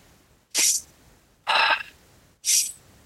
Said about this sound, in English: It's that Superman pose, and you just breathe deeply. So breathing in through your nose and a long exhale through your mouth. Breathing in. Out.